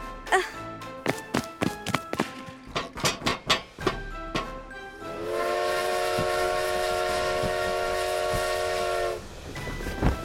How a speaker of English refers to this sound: This is crazy. Oh, we're on a train!